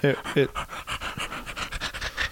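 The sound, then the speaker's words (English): A person imitates Vince sounding like a panting dog: two short voiced yelps, then a quick, steady run of breathy huffs, fairly loud, with no other sounds behind it. “He just sounds like, Vince just sounds like a dog to me sometimes.”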